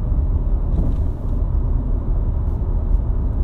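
Steady, loud low rumble of a car moving along the road during an Uber ride, heard from inside the cabin as a continuous droning hum with no voices.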